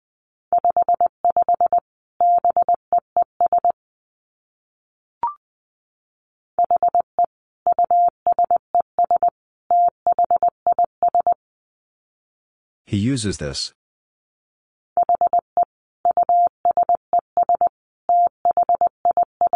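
Morse code at about 20 words per minute: a steady mid-pitched tone keyed in quick dits and dahs, sent in several groups, with one short spoken burst between them.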